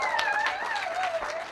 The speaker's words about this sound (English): Come on up, clap her up. Woo-hoo-hoo!